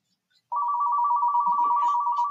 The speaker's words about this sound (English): Do you need to get that? No, that's just my office phone. I can't make it go away either, sorry.